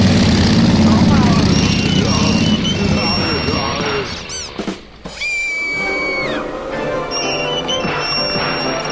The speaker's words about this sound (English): Bikes are so damn loud.